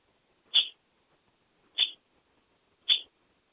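Three sharp, high squawks from pet birds, covered up and eating, ring out at a steady pace, about a second apart, clear against an otherwise quiet background with no talking.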